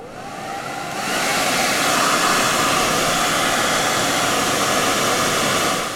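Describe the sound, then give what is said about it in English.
A hair dryer switches on after a brief quiet moment and blows steadily, a loud, continuous whooshing roar that holds unchanged to the end, with no voices. “Now, I just need to get a giant hairdryer.”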